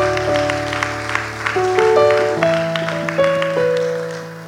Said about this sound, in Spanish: ¿Te podemos darle un aplauso?